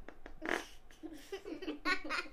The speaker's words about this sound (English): You're farting on the podcast. That might have come up on the microphone.